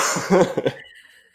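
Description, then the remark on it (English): A short burst of two or three harsh, breathy coughs with a laughing quality, fading into quiet after under a second. “I was in the middle of coughing.”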